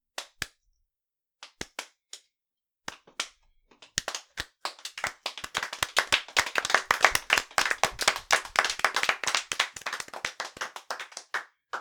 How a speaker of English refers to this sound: Thank you, citizens, but the applause really isn't necessary. But that's not for you. Yeah, it's because the train finally started moving.